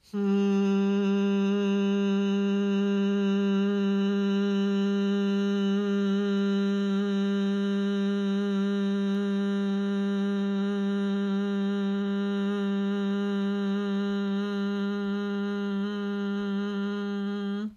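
A long, steady hummed exhale of bee breath yoga holds one low pitch for nearly eighteen seconds, loud and unbroken, with a rich buzzing overtone layer and no speech.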